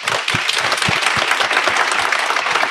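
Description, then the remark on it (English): At a live show, a crowd bursts into sustained applause for a prize giveaway winner: dense overlapping claps at a steady loud level throughout, with a few sharper individual hand claps standing out. No one speaks. “Big hand”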